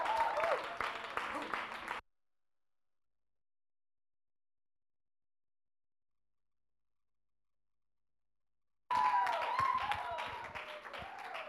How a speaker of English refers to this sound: With a round of applause, can we please welcome the Papa of the house